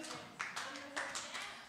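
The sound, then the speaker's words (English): A crowd of people claps together for the Lord during a sermon, a dense wash of many hands with several sharper accents standing out, steady and fairly loud throughout. “Let's clap the Lord.”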